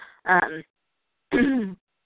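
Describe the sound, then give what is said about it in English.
Two short, rough bursts of throat clearing and coughing, fairly loud, separated by about a second of silence, with no talking around them. “I really apologize about this cough, you guys.”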